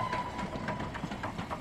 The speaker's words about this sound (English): I hear it long before I see it. The calm jogging of an old engine. A whistle blowing.